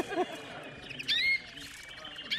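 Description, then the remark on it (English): A small caged songbird sings a short series of bright, high chirps and trills, moderately loud, with a faint low rumble underneath. “That's a fault, but it has freedom, which means it sings a lot. It has a lot of variety.”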